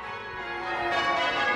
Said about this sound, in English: The bells of Christ Church ringing out before a special service marking World Day of the Poor. Here in the cathedral grounds, with sounds of traffic and passers-by all around, at first glance, it seems like an all-too-familiar scene in Dublin City.